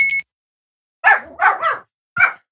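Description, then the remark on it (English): A dog named Chewy barks several times in quick, sharp bursts, with a brief pause before a final bark, following a short electronic beep at the start. “My dog is so used to that sound. It drives him nuts.”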